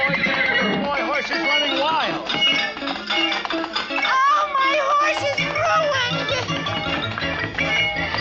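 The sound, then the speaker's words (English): A horse stampedes: loud, repeated whinnies with wavering pitch over a busy, continuous clatter of hooves, with a few excited voices mixed into the commotion. “I didn't know the horse would stampede.”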